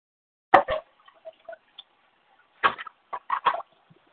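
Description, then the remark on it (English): Clattering, metallic knocks like pots and pans, heard as background noise over a caller's headset line, in two short bursts of several clanks each, with a few faint ticks in between. No one speaks. “Sounds like pots and pans in the background, like you're in the kitchen or something.”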